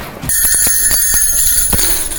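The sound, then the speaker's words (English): Jingle bells shaken briskly for about two seconds as a signal for a change of topic, a bright metallic jingle with quick rhythmic rattles, loud and alone with no voices. “And in the spirit of the season, I will be using jingle bells to signal when I'm changing topics for my podcast listeners.”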